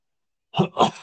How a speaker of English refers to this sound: No, I've got to clear my throat. Excuse me.